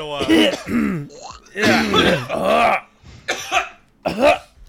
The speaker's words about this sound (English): Alright, everybody, like, just get the coughs out, and so we can just, you know, clear our throats.